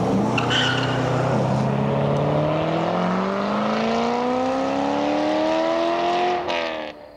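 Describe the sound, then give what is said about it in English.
A loud car engine roars and steadily climbs in pitch as the car accelerates hard, racing toward the listener, for several seconds, with a faint tire squeal, then cuts off abruptly near the end. “Yet another night, the car might come racing toward me from in front.”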